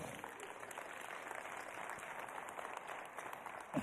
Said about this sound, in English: You can release some tension and give God a round of applause for that. Come on.